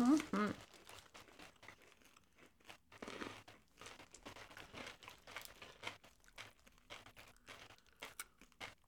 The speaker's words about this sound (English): And for those of you who like ASMR, we can eat directly into the microphones. You hear us crunching on these because they have pretzels in the middle.